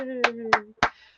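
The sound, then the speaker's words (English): Three sharp hand claps in an even, steady rhythm, given by one person as a tribute on behalf of theater fans, the first two over a sustained voiced tone from a person, the last one ringing out alone. “And they, so when I clap, hear all of their thunderous applause, and this is for you.”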